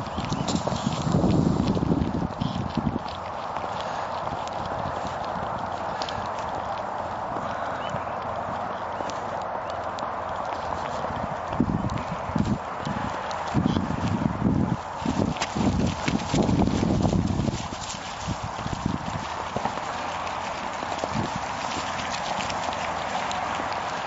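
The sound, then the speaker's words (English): A dense, continuous clatter of sheep hooves on a hard surface, many feet pattering quickly together, with a steady background rumble throughout, from a played video of sheep being chased around, believing there is a sheepdog behind them. “The sheep believe there's a sheepdog behind them.”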